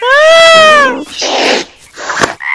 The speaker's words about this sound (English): Bad kitty! Rose, not your cat toy. Paws off!